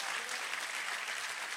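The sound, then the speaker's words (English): An audience, urged during a sermon to clap louder, claps in a steady, dense wash of applause, the many hands blending into a continuous bright crackle at an even level throughout. “Oh, come on, clap a little bit louder”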